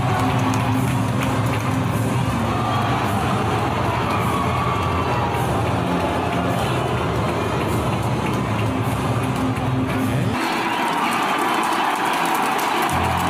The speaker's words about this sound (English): So you heard a little cheer for Paul McCartney, boo for LeBron, and then Bradley Cooper, who's a big Philadelphia Eagles fan, got the biggest pop.